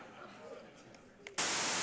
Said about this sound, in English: I'm not kidding you. This is what we sleep to. Like, we didn't just buy a fan like some of you. We bought a special device called a white noise maker.